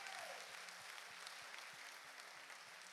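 An audience claps steadily for the full three seconds, a dense, even wash of many hands with a regular low thump pulsing underneath.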